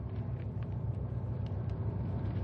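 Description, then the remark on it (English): A car engine rumbles steadily, a low continuous drone with faint higher clicks, as one car pulls up alongside Patrick's stopped car. No voices are heard. “Pull alongside Pat's car, pal.”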